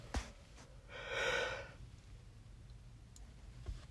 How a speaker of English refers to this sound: Oh my God, I keep yawning.